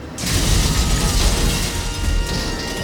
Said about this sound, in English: The bus crashes into a film rental shop.